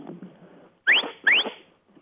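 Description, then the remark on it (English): A sheepdog whistle command, the 'come by' signal telling the dog to go left: two short, sharp whistle blasts in quick succession, each sweeping quickly upward in pitch, loud and clear over faint background noise. “And the whistle command that goes with that command is a short, sharp whistle.”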